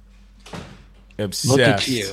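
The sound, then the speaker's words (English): A door slides or swings shut with a single muffled thud, then people start talking loudly and excitedly right after. “Close the door, dude.”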